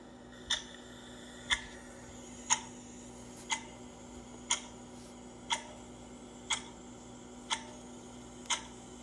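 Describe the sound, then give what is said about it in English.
A steady clock ticks once per second, nine crisp clicks in an even rhythm over a faint low hum, with no voices. “Let the clock begin.”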